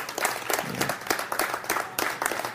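An audience applauds steadily, a dense wash of many hands clapping at once with sharper claps popping out of the crackle, holding at an even moderate loudness throughout.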